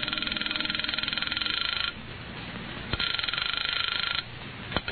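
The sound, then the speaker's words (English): A telephone rings on the line as a caller phones a number, heard through a narrow, tinny phone connection: two long trilling bursts separated by a pause of line hiss, with soft clicks near the end. “So I call the phone number next to the name on the pad that reads Janice”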